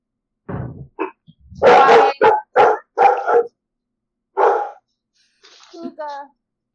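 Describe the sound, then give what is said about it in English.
A dog barks in an irregular run of loud, sharp barks, pauses, gives another bark, then ends with softer whining yips. “Barky dog.”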